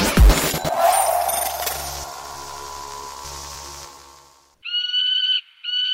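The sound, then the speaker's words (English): A sharp crash rings out and slowly fades, then a hawk cries out twice in quick succession, a loud, piercing screech with no talking. “Hawks and birds are not the only serial killings around here.”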